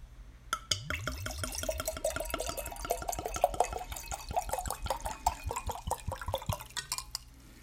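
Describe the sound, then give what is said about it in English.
Rosé wine glugs from a twist-cap bottle into a glass in a long, steady pour, with quick rhythmic gurgles lasting about seven seconds, fairly loud, with no talking. “It's been a rough week, so this is a long pour.”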